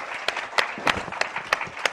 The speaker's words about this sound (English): Let's give our amazing panelists another round of big applause. Thank you.